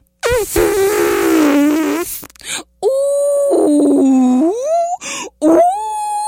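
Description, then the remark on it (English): A person vocally imitates an elephant groaning: long, loud, wavering moans that slide down and up in pitch, broken into several drawn-out bursts with brief pauses between them. “Pretty soon, Elephant woke up, and Elephant started groaning.”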